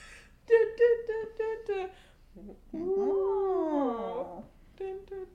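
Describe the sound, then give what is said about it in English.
A male dog lets out a quick run of high, strained whimpers, then a long wavering howl that rises and falls before a final short whine. The dog sounds fairly loud. “You know the dog? He scared me.”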